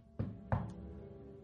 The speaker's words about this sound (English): When he arrived, he knocked at the door.